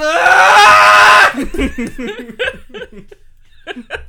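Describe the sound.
A person lets out a loud, sustained mock scream lasting just over a second, then it breaks off into animated talking and laughter from other voices.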